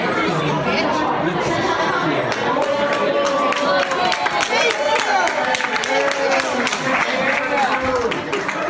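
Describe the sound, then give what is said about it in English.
A dense crowd of overlapping voices shouts and chatters excitedly, with scattered claps and whoops, loud throughout, as people at an airport cheer while a woman is taken out in a wheelchair and escorted away. “There was a viral video that was going on, and the ladies actually, they took her off on a wheelchair, and she's flipping people off as she's being escorted out, and people are cheering and everything.”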